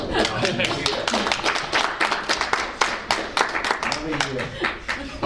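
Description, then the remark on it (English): An audience at a meeting breaks into steady, dense clapping as the evening's business concludes after a motion carries. The clapping fills the full five seconds at an even loudness, with a few voices murmuring underneath the applause. “We can clap.”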